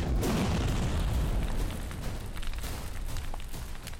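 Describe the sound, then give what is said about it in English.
Two explosive blasts go off, a deep, loud boom with heavy low rumble that slowly dies away into crackling debris and scattered pops, with no voices. “These two blasts sound off.”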